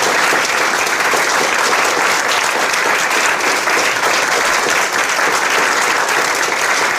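A sustained round of applause from an audience for the guests Paddy Barclay, Alison Rudd, Tony Cascarino and Tony Evans, dense and loud, with many hands clapping in a steady crackling wash that holds evenly throughout, no voices standing out.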